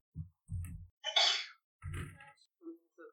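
A muffled sneeze from the other side of a small apartment, preceded by short catching breaths and followed by a second, smaller burst, faint and distant with no talking over it.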